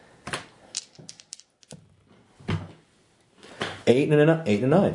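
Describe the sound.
Two twelve-sided dice are rolled and clatter across a hard table in a quick burst of sharp clicks and rattles, settling after a second or two before someone starts talking.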